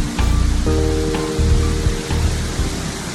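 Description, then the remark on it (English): A loud waterfall roars steadily with a dense, hissing rush of water that never lets up, broken now and then by a few low thuds and a faint steady hum. “So I might come away from the waterfall there, so it's not as loud.”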